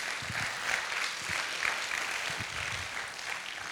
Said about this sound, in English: Can I hear a good amen? Come on, let's give the Lord a good round of applause.